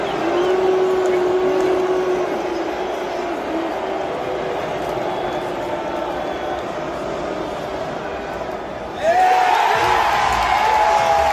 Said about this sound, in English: Of course, everyone booed.